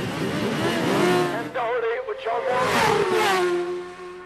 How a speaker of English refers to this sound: Until you've stood beside a road race as man and bike blur past, you haven't experienced the thrill and the fear of it.